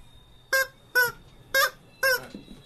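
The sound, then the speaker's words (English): A rubber chicken toy on the Fitz Show squeaks four times in a steady rhythm, each squawk a loud, shrill, nasal honk lasting about a quarter second, with brief quiet gaps between them. “have you seen Rubber Chicken?”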